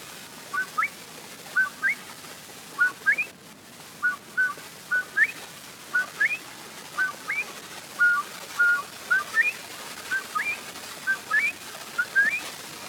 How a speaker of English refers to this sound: There is, however, a barnyard fowl, the guinea hen, who in calling his buckwheat, buckwheat, buckwheat, produces two distinct notes.